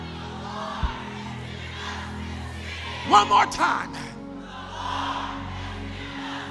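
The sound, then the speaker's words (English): A standing audience shouts a declaration to the heavens together in unison, "The Lord has given us this city", a short burst of loud, overlapping voices midway through, surrounded by the steady murmur of a large crowd, with a single voice speaking briefly. “And I want you to shout to the heavens.”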